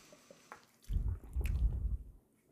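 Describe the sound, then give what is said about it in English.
Wet slurping and squishy liquid sounds as someone takes a sip of Waiakea Hawaiian volcanic bottled water, naturally alkaline, with a couple of faint clicks beforehand and no talking. “It kind of tastes like Dasani and Ozarka mixed together.”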